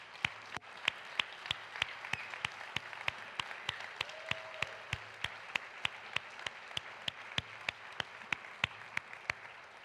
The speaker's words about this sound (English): And so would you join me in giving one more big round of applause for all of those people who allow God to change lives through their service. Let's say thank you.